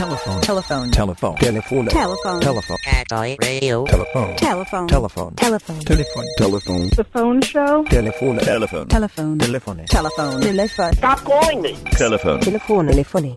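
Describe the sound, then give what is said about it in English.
A telephone rings in repeated bright bursts, spaced a few seconds apart, fairly loud, layered over continuous voices and busy vocal sounds throughout. “Telephone.”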